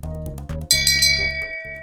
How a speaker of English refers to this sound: So why don't we ring that bell of shame and get on with it?